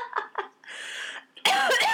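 A couple of short, sharp coughs, then a rougher stretch of hacking and a louder, breathy burst at the end, fairly loud.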